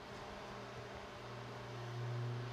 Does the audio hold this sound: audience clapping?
no